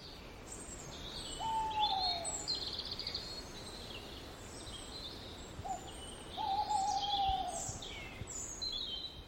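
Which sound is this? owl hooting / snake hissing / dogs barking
owl hooting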